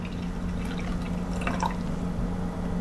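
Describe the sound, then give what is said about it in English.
Beer poured from a can trickles and drips, with a few brighter drops standing out midway over a steady low hum; nobody speaks. “Pour it up here.”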